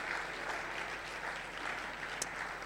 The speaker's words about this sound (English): So put your hands together for yourself.